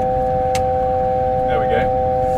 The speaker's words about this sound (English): Okay, what's that noise? That's saying you've bust your altitude. I've bust my altitude? I'm too high. You're too high, yeah.